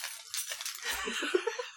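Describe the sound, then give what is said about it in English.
Hop's bunch of keys jingles as a foley effect as he walks back to the small room next to the two jail cells, a continuous bright metallic shimmer with small clinking accents, fairly soft and steady for under two seconds with no voices. “As he walks back to the small room next to the two jail cells, you hear the jingling of his keys. Foley work.”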